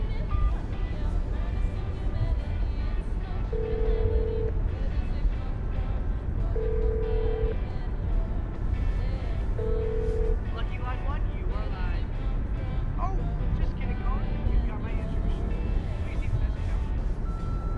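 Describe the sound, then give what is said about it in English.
A phone line rings three times at steady intervals, each tone a clear electronic buzz, over a constant roar of background noise as the call goes unanswered. “Peter, pick up the phone, you ass!”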